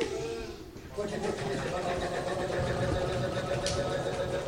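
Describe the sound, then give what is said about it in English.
Loud, steady roar of the engine of a helio chopper, a helicopter with two jetpacks attached called the Air Wolf, with a sustained droning whine over dense rumbling noise; it dips briefly near the start, then surges back and holds at full strength. “No, it's a helio chopper! With two jetpacks attached to it.”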